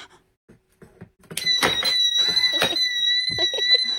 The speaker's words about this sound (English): Now the alarm is activated.